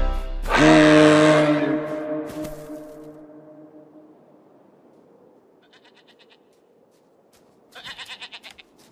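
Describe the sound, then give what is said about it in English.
A deep, sustained blast from a rain horn, made to recreate a reindeer's mating call, rings out and slowly fades, then after a quiet pause a goat answers with a short, loud, quavering bleat near the end. “Sorry, little goat. I was calling for a rain...”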